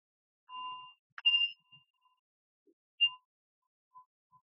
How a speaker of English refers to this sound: And I'll ring the bell once to start and once to end.